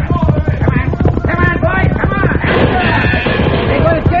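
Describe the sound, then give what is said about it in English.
A horse's hooves gallop in a quick, steady beat that grows rougher and noisier as the animal rides off, with excited voices calling out over the clatter. “Get on your horse quickly. Go. Come on. Go.”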